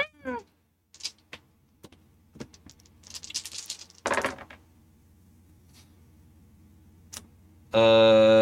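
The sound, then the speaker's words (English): Empath dice rattle and clatter across a hard surface in a couple of quick bursts, with scattered sharp clicks before and after, ending in a sudden steady electronic tone. “So I'm going to roll my empath dice that you All right.”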